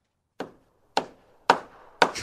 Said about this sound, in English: Sorry, I was trying to find a hammering sound effect, but they make me now watch 10 commercials on YouTube just for a freaking sound effect. Here you go.